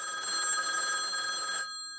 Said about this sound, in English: And then a light starts flashing on another phone on the desk, which is answered by another person at the same time. And then lights start flashing on all the phones, and they start ringing all at once.